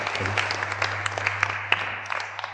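An audience applauds in a dense, steady patter of many hands clapping, with a few sharper claps standing out, easing slightly toward the end over a faint low hum.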